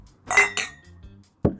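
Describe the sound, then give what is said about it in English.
Wine glasses clink together in a toast: two quick, bright chimes with a brief ringing tone, followed a moment later by a soft, dull knock. No one speaks. “Hey, I'll fucking cheers, bro. I'll drink to that.”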